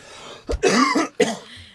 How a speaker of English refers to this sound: Excuse me for all the coughing, listeners. I'm so sorry.